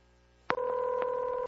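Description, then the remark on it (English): A telephone number being dialed on a touch-tone keypad to call a crisis line: a steady electronic dual-tone beep with faint clicks between key presses, clear, after a brief quiet start. “Phone Fun! Phone Fun! The dialing, devilishly demonistic”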